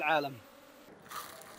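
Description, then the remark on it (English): A dense, steady buzz of many Yemeni honey bees from a beekeeper's hives in Yemen droning together, with a brief higher whine at the start and the hum swelling slightly again near the end. “This sound is the buzz of business and music to the ears of beekeeper Abdul Jabbar Al-Ghouli”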